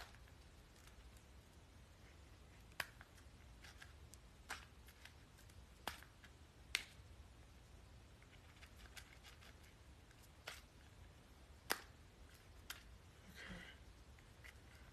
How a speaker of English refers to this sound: Okay. Let's get this basil going. Basil time. Be careful when you're using scissors, you guys.